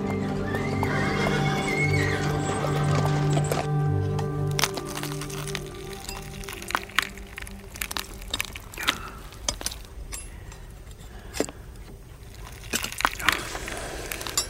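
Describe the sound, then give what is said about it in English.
A horse whinnies with a long, drawn-out call, then hooves clop in an irregular series of sharp knocks and cracks, with no voices. “I could be that fly whisked away by the horse's tail.”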